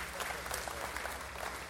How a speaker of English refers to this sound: Go ahead, you can clap.